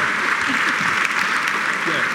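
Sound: audience applause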